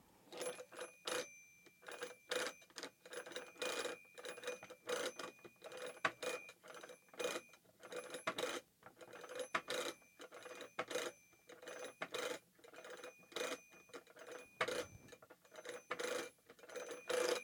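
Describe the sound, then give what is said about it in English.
A long run of quick button clicks as a man dials a phone number on his phone keypad, digits punched one after another, with faint electronic beeps and short pauses between bursts. No one speaks. “Then he calls his friend Angela on his phone. Like so.”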